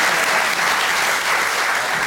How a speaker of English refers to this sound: So before we bring on our fantastic act to finish the podcast, can you all give it up, a splendid round of applause for our wonderful four guests, ladies and gentlemen.